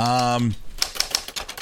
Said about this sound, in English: I'm going to take out the typewriter and start. There we go. Make that note right now.